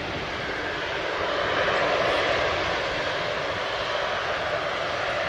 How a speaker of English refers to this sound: That's the plane coming in right there. I've got another video where it actually shows a little bit more of it from another angle.